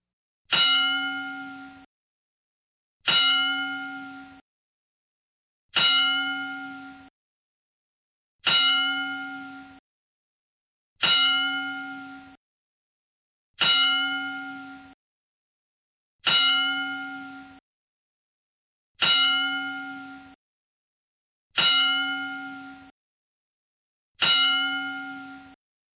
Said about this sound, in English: Howard Finkel, the late, great Howard Finkel, passed away at the age of 69. And let's give Howard a very well-deserved 10-bell salute.